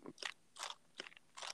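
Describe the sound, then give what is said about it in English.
Several keys on a mechanical keyboard are mashed at once, giving four quick, crunchy clattering bursts in an uneven rhythm, fairly soft, with no talking. “We don't abuse mechanical keyboards.”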